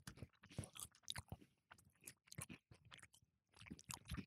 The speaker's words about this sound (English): I think a lot of people do. But it's okay. We don't care. Enjoy our chewing.